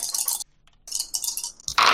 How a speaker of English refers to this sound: So let me see how many dice I need to grab for this. I need you to roll all the dice that you have.